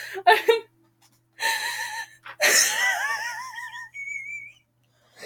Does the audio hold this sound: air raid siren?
no